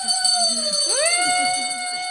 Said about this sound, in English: we'll hand the bell to Father Ketter, and he gets to ring it